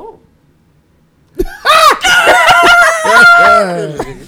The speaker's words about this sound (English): Oh. Why you so screeching?